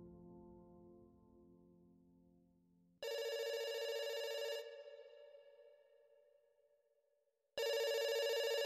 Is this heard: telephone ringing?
yes